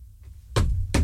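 Two loud, heavy bangs down on a floor to say hello to someone below, spaced about half a second apart, each a sharp thud with a deep booming low end and no voices.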